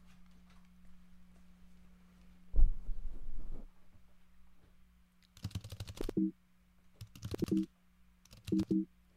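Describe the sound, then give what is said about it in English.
Someone imitates keyboard typing with their mouth, producing a soft thump followed by three short bursts of rapid clicky clatter over a steady low hum. “Pretty good typing sounds.”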